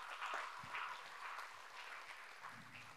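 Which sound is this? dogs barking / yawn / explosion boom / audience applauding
audience applauding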